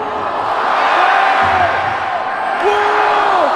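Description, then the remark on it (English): A large stadium crowd roars steadily for the whole stretch before the UNC vs. Pack football game, hyped up by Scotty McCreery, with individual shouts and rising whoops cutting through the dense wall of cheering. “Of Scotty McCreery getting the crowd jacked before the UNC Pack game.”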